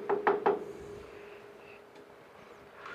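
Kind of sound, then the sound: impact, knocking on a door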